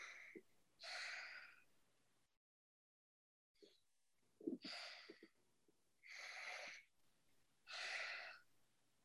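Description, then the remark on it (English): Slow breaths drawn in and out through the nose, with several airy, hissing inhales and exhales spaced a second or two apart and a short silent pause partway through. “Release and come back to your breathing in the nose, out through the nose, in through the nose.”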